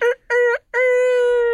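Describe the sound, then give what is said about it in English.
A rooster crows once, loud: two short bursts followed by a long, sustained, harmonic final note, with no other sounds around it. “Cock-a-doodle-doo or something.”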